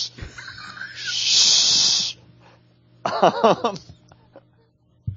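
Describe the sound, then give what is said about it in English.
A person makes a loud, sustained hiss for about a second, imitating a snake, followed by a burst of laughter or excited voices. “Hissing at our listeners is not fun.”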